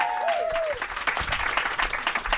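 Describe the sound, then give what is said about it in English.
A crowd bursts into sustained applause, dense and steady clapping throughout, with a brief high whoop or cheer rising at the start before the clapping takes over. “Get up and give her a round of applause.”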